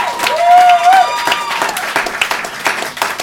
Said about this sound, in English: I know you guys have clapped a lot, you've done a lot of giving it up, but please, one more time for every comedian that you've seen tonight. Clap for him, right?